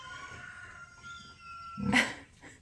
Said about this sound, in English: Uh-oh, I think that was a baby. That sounds like a rooster. That was rooster, but I think I'm hearing a baby try to crow.